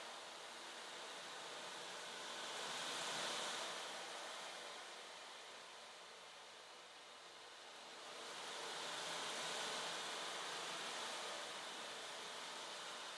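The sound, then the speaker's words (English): Soft ocean waves wash onto the shore in two slow, hissing swells that rise and fade, a steady surf with no voices. “Feel the waves wash away self-criticism and judgment.”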